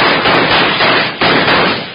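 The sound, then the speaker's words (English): Loud gunshots ring out, two sharp cracks about a second apart, each trailing into a dense, rumbling wash of noise that barely fades between them. No one speaks. “Bill! It's Hickok! Shoot, you jugger!”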